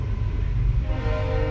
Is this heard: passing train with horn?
yes